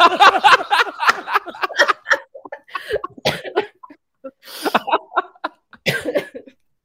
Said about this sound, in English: I've got a cold. Don't make me cough and laugh.